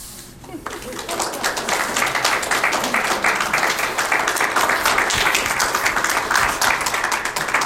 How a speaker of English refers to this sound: Just gonna give another round of applause.